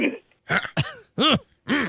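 A man clears his throat several times in a row on an answering machine message, a series of rough, raspy hacks with short pauses between them, fairly loud with no talking.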